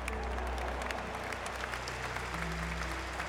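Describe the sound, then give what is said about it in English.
A large crowd claps and cheers steadily, a dense wash of applause with scattered sharp claps over a low rumble, at the 1926 A&M versus Baylor football game in the Cotton Palace. “Charles Sessums headed into the Cotton Palace and settled down to watch the big game”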